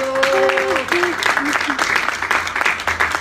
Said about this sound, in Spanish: Señor, dale un aplauso al Señor.